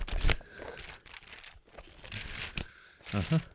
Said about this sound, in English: So like and, this, I'll go. Not like, I'm turning the page, and we're done. Like that.